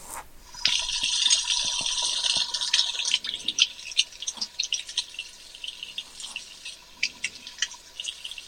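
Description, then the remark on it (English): A thin stream of water runs for a couple of seconds as 2 tablespoons of water are poured into a measuring spoon, followed by scattered light drips and small metallic clinks, with no one talking. “3 tablespoons of honey. Okay. And 2 of water? Yep. Okay. I'm going to do the water first.”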